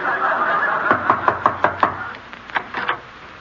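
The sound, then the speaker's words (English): Someone knocks on a door in a quick run of about five sharp raps, then a shorter second burst of knocks after a brief pause, clear with no talking. “Don't ring the bell. Can't you read the sign? Maid sleepy. I'll knock.”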